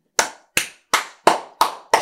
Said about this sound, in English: I had to clap for that.